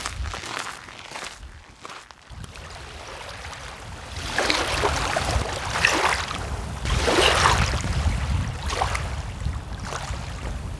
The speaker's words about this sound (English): The water makes gentle waves as it passes through the rocks, providing us with a relaxing sound.